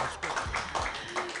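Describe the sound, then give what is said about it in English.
An audience claps for a comedian in a dense, steady burst of applause, many hands overlapping into a continuous patter with a few louder accents, lasting a little over a second. “Clap your hands together, everybody, for Kyle Morrissey.”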